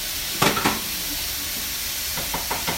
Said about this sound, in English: We always have a sound machine going in Jordan's room and in the hall while she sleeps. The bright side is that it feels like I live on the beach.